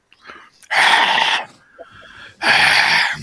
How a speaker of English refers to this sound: And now you're breathing in the microphone like a fucking Neanderthal.